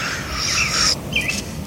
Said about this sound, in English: Got the birds signaling that night is approaching.